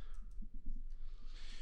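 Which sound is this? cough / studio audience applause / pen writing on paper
pen writing on paper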